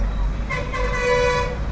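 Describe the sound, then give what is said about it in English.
A car horn blares in a sustained toot over a steady rumble of traffic on a main road in India, by the City Palace, with engines droning and faint voices in the background. “So it's a bit noisy, got a lot of traffic below us. It's another main road in India.”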